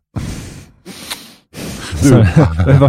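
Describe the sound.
Two breathy nasal exhales through the nose, the second carrying a faint high whistle, caused by worsened breathing, followed by a person starting to talk.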